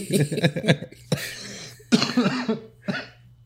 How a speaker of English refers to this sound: So I still have the coughs. It's not as bad now.